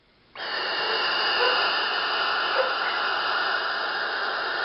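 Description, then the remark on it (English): A barn owl lets out one long, harsh, raspy screech that starts abruptly and holds steady for several seconds, loud, with no other sounds around it. “we do have a clip of a barn owl.”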